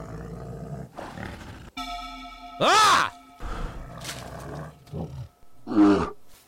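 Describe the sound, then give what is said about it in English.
An agitated bear, clawing the ground, lets out harsh, rumbling roars and low growls in several uneven bursts, one loud roar sweeping up then down in pitch, while a man shouts once. “The bear seemed even more agitated. It clawed the ground once again, lowered its shoulders.”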